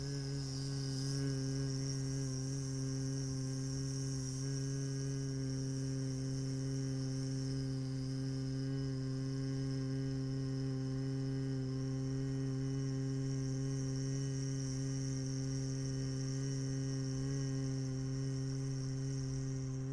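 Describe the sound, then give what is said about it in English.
A low, steady human hum holds one pitch for the full twenty seconds, buzzing evenly like a bee during a bee breath breathing exercise, moderately loud with no speech. “We're doing bee breath. Bee, bee, bee.”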